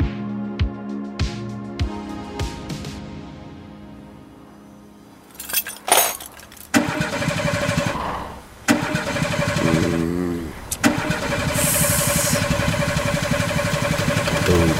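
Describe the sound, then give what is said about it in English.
A car engine cranks repeatedly with a rhythmic grinding whir, sputtering and coughing in loud bursts without catching and settling into a steady run; the car is dead and out of oil. “Now let's switch from political troubles to car troubles.”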